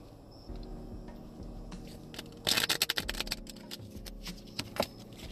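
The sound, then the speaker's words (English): A quick riffle of a deck of tarot cards, a dense burst of papery flicks and snaps in the middle, followed by scattered soft scrapes and taps as the deck is squared, with no talking. “And let's see, we're going to do two more shuffles.”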